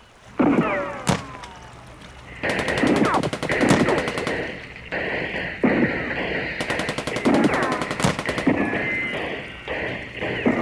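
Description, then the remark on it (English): Loud machine gun fire rattles in rapid bursts, two long sustained volleys separated by shorter pauses and sharp single cracks, with squealing, chaotic noises mixed in and no talking. “Gunfire!”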